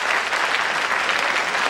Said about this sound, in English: How many of you folks here have never been to a TV studio before? Applaud if you've never been to one of these things.